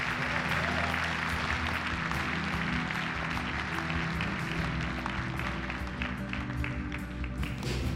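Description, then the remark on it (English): A crowd claps steadily for several seconds, a dense wash of many hands applauding together at a fairly constant level, as an audience welcomes the preacher Bayless Conley to speak. “If you would, put your hands together. Let's welcome Bayless Conley today.”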